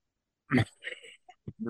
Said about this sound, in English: He's choking on his own cough. Oh, that hurt. Oh, man.